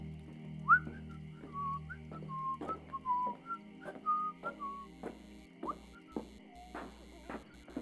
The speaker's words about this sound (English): … walked down the hall whistling.